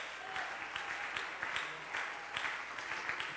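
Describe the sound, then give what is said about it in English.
A church audience claps hands together in praise to the Lord at a Thursday afternoon service, many hands producing a dense, continuous patter of applause at moderate volume throughout, with no voices standing out. “Why don't we clap our hands together to the Lord?”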